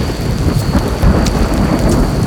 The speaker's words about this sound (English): Let's get out of the rain.